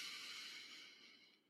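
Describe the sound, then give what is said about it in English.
A long, deep inhale drawn in through the nose as part of a calming deep-breathing exercise, a soft airy rush that slowly fades over about a second and a half, with no talking. “We're going to breathe in through the nose.”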